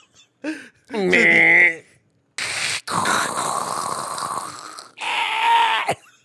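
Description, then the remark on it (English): A voice imitates an AOL dial-up modem connecting: warbling, whistly tones with a piercing beep, then bursts of harsh hissing static and a final shrill squeal, loud throughout with brief gaps between segments. “Do a 24-hour stream of the AOL load up.”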